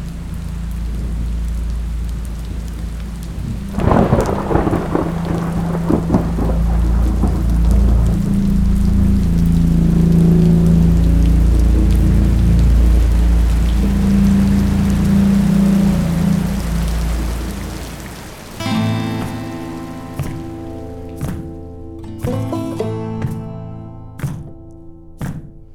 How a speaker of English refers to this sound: Until one day, the rain began.